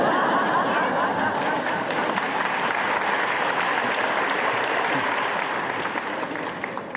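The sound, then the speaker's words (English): An audience applauds a talk steadily, a dense rush of clapping hands that stays loud throughout and eases slightly at the end, with a few chuckles mixed in. “Because, by the way, I gave this same talk to your relatives and they applauded even louder.”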